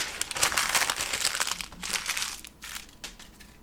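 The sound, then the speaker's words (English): A sheet of paper is crumpled, a continuous crackly, crinkling rustle with irregular sharp bursts, fairly loud and with no one speaking. “And I think if you just, like, took that piece of paper, held it behind your chair, or maybe, like, sat on it and then crumpled it, we'd be good.”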